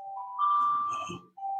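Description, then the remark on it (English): A phone emergency alert blares a steady, piercing electronic tone that holds for over a second, cuts out briefly, then starts again. No one speaks. “We're podcasting during an emergency. Emergency. Everyone, check your phones.”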